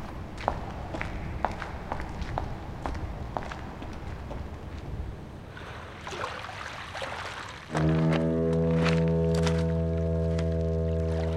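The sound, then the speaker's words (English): Steady footsteps walk down toward a deserted pier at night at a moderate pace for several seconds, then a deep, sustained foghorn-like drone swells up and drowns out the steps near the end. “Then we get moving again.”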